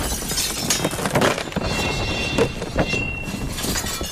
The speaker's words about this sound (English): The chains smack into the side of the Rose. Jesse, you hear the sound of glass shattering and all sorts of terribleness.